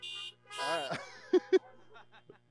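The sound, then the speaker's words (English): Car horns honk: a couple of sustained blaring tones followed by two short, sharp toots, then fading with faint background voices. “Honk if you can hear me.”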